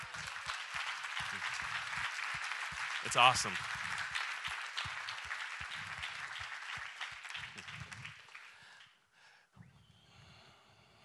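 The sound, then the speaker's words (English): An audience claps for a man who has stood up, in a dense, sustained wash of steady applause lasting several seconds, with a brief voiced exclamation rising above it before the clapping thins out and fades. “I know that shame tries to tell us, like, yeah, clap for him. That's awesome.”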